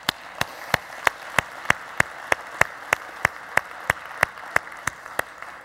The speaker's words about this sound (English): yeah, we can clap.